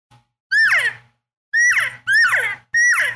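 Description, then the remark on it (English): Four loud, nasal cow elk calls made by mouth off the side of the mouth as advanced cow calling, each a rising then falling squealing mew, the first two spaced apart and the last three coming in quick succession with no talking. “So on advanced cow calling, but it's using the side of your mouth.”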